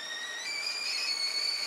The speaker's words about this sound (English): A tea kettle. And that would be a tea kettle. Good. Oh, yes. very good. Yeah. Tea kettle, yes, correct.